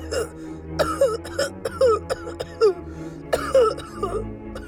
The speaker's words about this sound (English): In seconds, he had Catherine's mouth unobstructed, and she coughed up more of the grass.